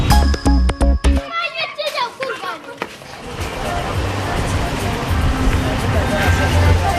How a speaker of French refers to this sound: L'ambiance sonore d'Agadez que vous avez rapporté récemment de reportage